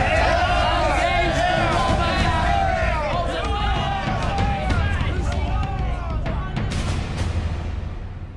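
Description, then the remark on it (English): A large crowd roars and cheers continuously, many voices shouting over one another in a loud, dense swell that holds steady for several seconds before easing slightly at the end. “I could hear their cheers from here”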